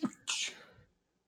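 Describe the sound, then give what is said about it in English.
A single sharp sneeze: a brief voiced intake followed by a loud, hissy burst that quickly fades out, with no talking around it. “Chew, excuse me.”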